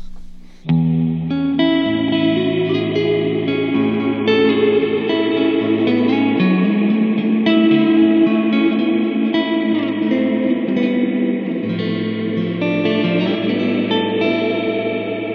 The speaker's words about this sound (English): So the Empress reverb is rad because, you know, it's a digital reverb, but I think it sounds just, you know, super clear. Mm-hmm. And you've got lots of weird stuff in there, like the ghost setting, which I get a lot of use out of.